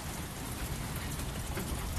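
Steady, dense rain pours down, a continuous hiss of countless drops striking a surface, fairly loud and even throughout with no voices or other sounds.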